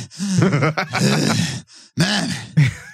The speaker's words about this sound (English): You don't have enough heavy breathing.